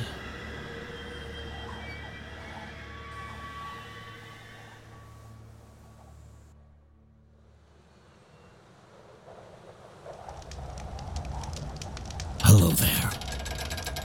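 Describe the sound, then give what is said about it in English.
A train rumbles along the tracks while its wheels squeal in sustained, piercing tones. The noise fades for a moment, then swells back with a sharp, loud hissing burst near the end. “There is an expert on the transcontinental terror train”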